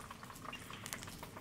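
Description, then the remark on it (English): Steady, dense crackling and bubbling of about half a bag of fries frying in hot oil in a small, compact deep fryer, a continuous sizzle with scattered sharp pops and no voices. “I got not the whole bag, maybe half the bag of fries in here.”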